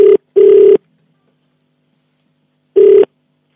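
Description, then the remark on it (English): A phone line ringing back on an outgoing call: steady electronic ring tones in short bursts, a quick double pulse, a long pause, then another burst, clear with no voices. “All right, it's ringing.”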